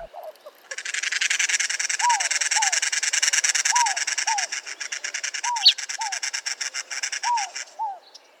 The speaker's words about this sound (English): Two of my personal favorites that used to frequent my childhood backyard are the cactus wren and the gambel's quail. Both are striking and have such distinctive calls. And the cactus wren sounds like a car trying to start.